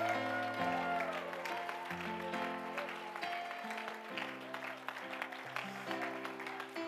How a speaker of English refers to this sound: So we're going to clap our hands and say we present the Lord Jesus Christ tonight. If he walked in here, how would you clap? If he come cascading down the banister rail of glory, how would you applaud that?